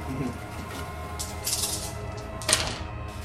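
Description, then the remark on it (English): Six dice rattle and clatter across a hard surface in a quick burst of clicks, ending with a sharper clack as they settle, over a low background hum. “That's 6 dice.”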